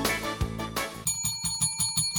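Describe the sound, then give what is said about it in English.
A small, newly bought bell rings with a bright, sustained tone, first in a couple of strikes and then in quick, rapid repeated dings, clear with no voices. “We have two bells for the Odd and the Offbeat. This was a new one.”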